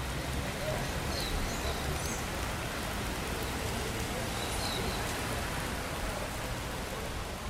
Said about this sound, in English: Standing here, with the rain pouring down, it's hard to believe that this city, in the world's most water-rich country, is threatened by drought.